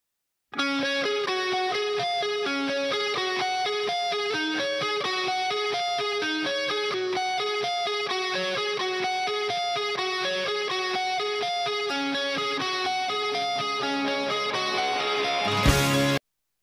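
A bright, clean-toned rock guitar plays a fast, repeating arpeggiated riff at steady volume, with a crisp ringing attack on each note and no vocals, before cutting off abruptly at the end.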